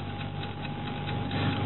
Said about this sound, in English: Shut up, clock.